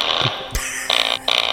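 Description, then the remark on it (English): A fart sound effect played from a button: a sharp click, then two short, loud, raspy bursts with a buzzy, hissy edge, heard alone with no talking. “I found a fart. I want to find more farts.”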